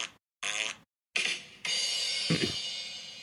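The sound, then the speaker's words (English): A series of loud fart sound effects played from a soundboard: two short, sputtering blasts separated by brief silences, then a longer, drawn-out raspy one that trails off, with no talking. “I think I have a burp noise over here. Hold on a minute. Oh no, that's not a burp noise. That's the other one, right?”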